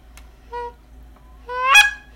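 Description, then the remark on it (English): A goose call blown in short bursts: a brief honk, then a longer, louder, rising honk with a raspy break, and another starting at the end. Clear, with no talking. “I bought Mitch a goose call because he's got a duck call that he's trying to learn how to use.”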